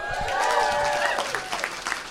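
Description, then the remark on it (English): A live audience at Cobb's Comedy Club in San Francisco, during San Francisco Sketchfest on a stormy night, applauds steadily. It is a dense wash of many hands clapping at once, with faint voices and cheers mixed underneath. “Let's just keep naming things so they have to keep clapping.”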